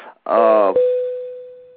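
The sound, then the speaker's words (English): A phone goes off with a short, buzzy electronic burst, then one steady mid-pitched tone that holds and slowly fades over about a second. “Is that your phone?”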